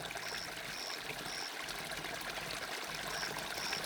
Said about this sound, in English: You are listening to the relaxing sounds of a soft, rippling river. Soundscape for sleep.